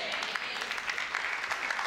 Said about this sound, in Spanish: Esa respuesta es como de ópera, ¿verdad? ¿Usted ha ido a la ópera o al golf? Que la gente aplaude así.